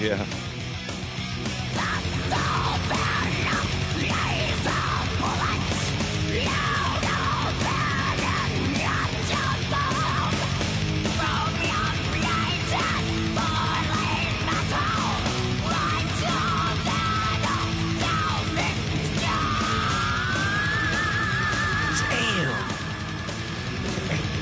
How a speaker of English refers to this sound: He's got that thing that … used to have. When he screamed, it sounded like he had two voices.